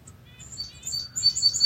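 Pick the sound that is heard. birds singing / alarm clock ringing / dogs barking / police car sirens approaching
birds singing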